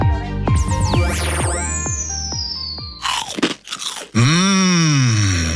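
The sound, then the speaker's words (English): Loud, crisp crunching bites of slow-cooked Penny's Crispy Pork Crackling burst out in a quick cluster, set between swooping electronic sweeps and followed by a long wavering groan-like tone. No one speaks. “Penny's Crispy Pork Crackling is slow cooked for that big crunch and taste. Put some crunch in your munch.”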